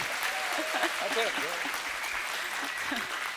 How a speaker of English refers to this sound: Would you guys clap and holler